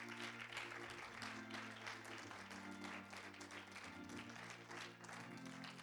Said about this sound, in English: Why don't we give Pastor and Sister Regan just one more hand clap of appreciation.